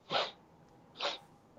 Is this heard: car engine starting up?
no